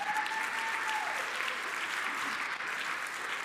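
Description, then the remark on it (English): An audience bursts into sustained hand clapping for God, a dense, steady wash of applause that holds at an even level throughout, with a faint high whistle-like tone briefly audible at the start. “Can somebody give God a hand clap?”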